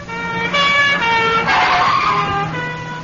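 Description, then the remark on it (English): Police sirens wail loudly and steadily, their tones shifting in pitch over a rumble of road traffic, with no voices present. “If the thief doesn't stop and surrender, a tape recording in the base of the handbag will play recordings of police sirens.”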